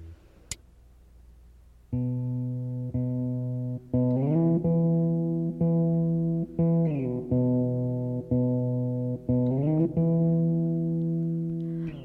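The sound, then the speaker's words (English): A cat named Nicodemus walks across a piano keyboard, pressing down low, droning clusters of notes that hold and then shift unevenly every second or so, with a brief click before the notes start. “He's walking on the keyboard.”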